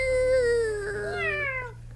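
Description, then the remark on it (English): A person imitates a cat with one long, drawn-out meow that bends in pitch, loud, over a faint low hum. “I thought you made a cat sound when you did that.”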